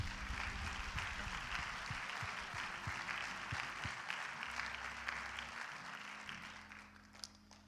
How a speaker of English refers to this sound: And I want to give honor to them if we would give them a hand clap tonight.